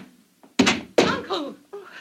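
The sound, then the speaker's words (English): A thrown spear slams into wood with a sharp, heavy thunk, quickly followed by a second solid knock, loud, before a short burst of voice. The spear misses a woman by an inch. “The spear missed her by an inch.”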